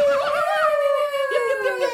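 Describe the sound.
A person imitates a coyote howl for the coyote coin in the Tales from the Lamp segment, a sustained, wavering tone that slowly glides downward in pitch, held loud and steady for about two seconds with a slight breathy texture.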